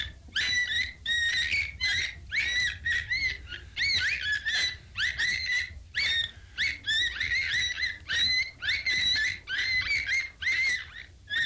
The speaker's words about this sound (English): That is the Arctic and subarctic cetacean known as the beluga whale. It has a large bulbous protuberance on its forehead it uses for echolocation, and its voice has got a twitter or chirp in it.